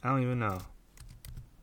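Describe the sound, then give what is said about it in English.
A brief voiced hum gives way to a quick handful of crisp laptop keyboard clicks, tapped in an uneven burst against a quiet background. “Sorry for the clicking. I'm just on my lappy-toppy here.”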